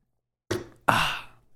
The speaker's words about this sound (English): So don't mind me. I am just opening a water bottle because I will get cotton mouth if I continue doing this. So quick little sip.